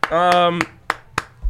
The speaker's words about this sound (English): let's clap it up. I like that.